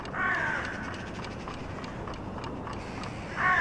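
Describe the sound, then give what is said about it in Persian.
Harsh crow caws ring out twice, at the start and again near the end, with fainter calls and a steady outdoor hum in between, at dawn in a street; no one speaks. “ما و این کلاغ‌های قشنگ نازنین که صبح سحر کوچه رو روی سرشون گذاشتن.”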